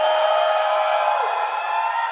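An audience screams together in a sustained, loud roar of overlapping voices, a dense wall of cheering and whooping that holds steady for the whole couple of seconds.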